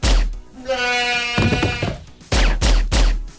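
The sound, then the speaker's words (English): A goat bleats once, wavering and nasal, between a series of sharp, muffled thuds of a gun fired with a silencer to shoot the goat: one before the bleat, one after it, then three in quick succession. “But if you are happy with the sounds of someone using a silencer to shoot a goat, let's do that again.”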